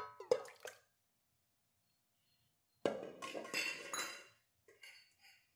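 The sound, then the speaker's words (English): A couple of sharp clinks of dishware, a pause, then a full cup of egg whites from eight large eggs glugs and splashes into a bowl for about a second and a half, followed by faint clatter. No talking. “We're going to pour it in the bowl.”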